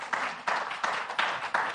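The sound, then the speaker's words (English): An audience claps for Jesus together in a steady, even rhythm, about five strong beats over a continuous wash of hand noise, with no voices standing out. “Come on, you want to clap for him, do it.”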